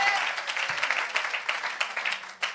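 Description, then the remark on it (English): An audience at Ocean Church bursts into steady, dense applause with a few cheers mixed in. The clapping stays loud and even for a couple of seconds, with no one speaking over it. “You can't just cheer.”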